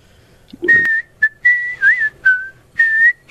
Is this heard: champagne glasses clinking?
no